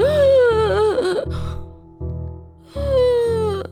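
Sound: labored gasping breaths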